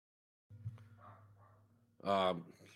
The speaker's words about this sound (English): My dog is barking uncontrollably. Hold on a second.